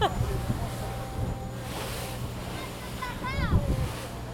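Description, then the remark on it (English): A boat pushes through choppy sea about half a mile off the coast of Lesbos, a volcanic island, on a calm day, its engine droning low beneath steady wind buffeting and waves slapping the hull, with faint indistinct voices in the background. “So we're about half a mile from the coastline, and it's quite choppy. even on a calm day.”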